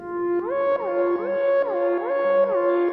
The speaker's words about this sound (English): Looks like another ship's approaching, and fast. The proximity alarm is going crazy. I don't like the sound of that, not at all.